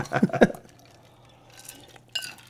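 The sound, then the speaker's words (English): Glasses clink together in a toast, a couple of light, bright taps, following a short low-pitched sound at the start. “You say something and then you cheer.”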